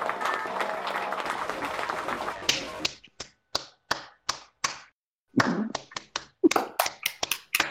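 Dense, overlapping hand clapping by the hosts to open a segment called the clapper, then a string of separate sharp claps in an uneven, loose rhythm with short silences between them. No one speaks.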